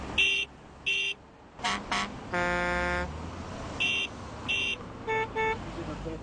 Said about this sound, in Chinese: 每天都有一辆接一辆经过的汽车向他鸣笛致敬。